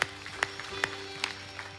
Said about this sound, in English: Let's give the Lord a clap offering right now.